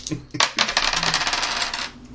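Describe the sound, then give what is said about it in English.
Dice are rolled on a table, clattering in a quick burst of bright clicks and rattles, tumbling for about a second and a half before settling. Fairly loud, with no voices. “No, just roll your dice.”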